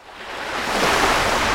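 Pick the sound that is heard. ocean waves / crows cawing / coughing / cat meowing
ocean waves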